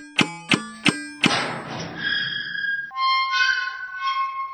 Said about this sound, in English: First, I just have to type in the passcode to open this heavy titanium door.